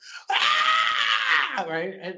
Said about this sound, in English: I love how every time they show hell, it's a Wilhelm scream. They've got to do the scream. It's part of it.